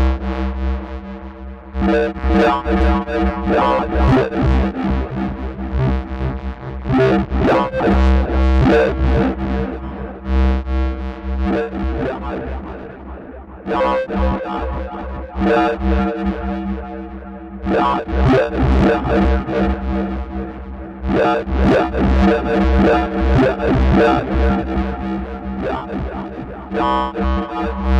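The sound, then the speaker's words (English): A self-patched modular synthesizer bouncing ball effect, with CV controlling other bouncing ball parameters, plays a loud, dense, buzzy tone whose pitch and texture shift constantly, with rhythmic pulsing bursts that repeatedly build and break off. No one speaks. “What we can do is self-patch this a little bit and use some of the CV to control other bouncing ball parameters.”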